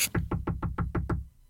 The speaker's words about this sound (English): I was really surprised to hear a knock on my bedroom door this late at night, and I assumed it was my 6-year-old sister,